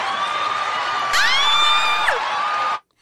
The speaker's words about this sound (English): This is celebrating our 1 year anniversary. And I think that deserves a round of applause as well.